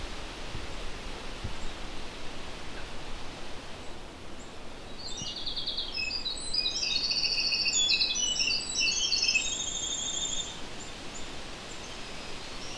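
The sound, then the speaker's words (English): A black-throated green warbler sings a single buzzy, high-pitched phrase of several notes in a fairly wet swamp with low-growing cedar and black spruce, set against steady rushing background noise like wind or running water. “There's some black-throated green warblers here as well.”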